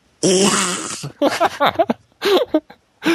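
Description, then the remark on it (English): A person imitates an elephant's trumpet with a loud, buzzy, wavering blast lasting under a second, followed by a few shorter voiced sounds and bursts of vocalizing. “Make your elephant sound.”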